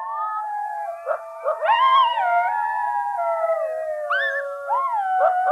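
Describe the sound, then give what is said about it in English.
Several coydogs howl together at night in a wavering chorus, long sliding wails overlapping with sharp yips and rising cries, steady, with no voices or other noise around them. “There's just kind of this mystical noise at night that was this very haunting howling that was going on.”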